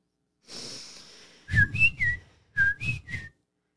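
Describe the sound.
A person whistles a birdlike call: a breathy hiss, then two groups of three short, high chirping notes with sliding pitch, separated by a brief pause, with no talking.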